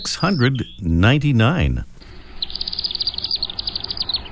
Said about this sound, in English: Well, we all have our favorite birds, and one of ours around here is the species you're hearing right now. It's the chimney swift, Keturah pelagica, a species that is in decline along with its swift species relatives